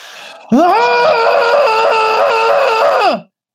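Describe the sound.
A single loud, ferocious scream bursts out and holds steady for nearly three seconds, shrill and strained, then drops off abruptly into silence after a brief quieter lead-in.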